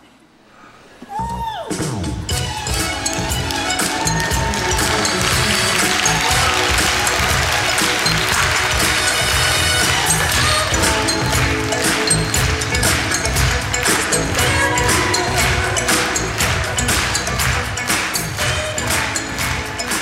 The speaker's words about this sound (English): Hundreds of people stood up and clapped along and danced in their seats. A fitting tribute to a mother and daughter who loved to dance.